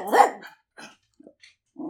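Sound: dog barking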